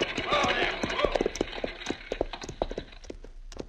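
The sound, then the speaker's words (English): Horse hoofbeats clop in a steady, uneven rhythm, gradually slowing and thinning out as the horses pulling a buckboard wagon come to a stop, with a rattling, noisy wash of movement underneath. “All right, Shorty, pull up them horses.”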